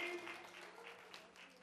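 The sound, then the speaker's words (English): An audience claps their hands to praise the Lord in a dense, continuous patter of many overlapping claps, fairly soft and steady throughout, with a faint sustained tone humming underneath. “Can you clap your hands and praise the Lord?”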